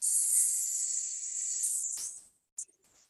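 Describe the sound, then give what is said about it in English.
A steady, breathy hiss pushed out through the mouth on an exhale, the healing sound for the lungs in a breathing exercise, lasting about two seconds, then cutting off with a soft puff, followed by a brief faint burst of breath. “And it kind of sounds like the end of a hiss.”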